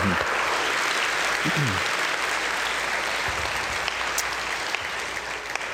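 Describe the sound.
A crowd at Stonegate church, celebrating its 13th birthday, applauds steadily, dense clapping holding at an even loudness throughout, with faint murmuring voices beneath the claps.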